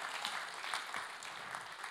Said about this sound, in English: Let's give him a clap this morning.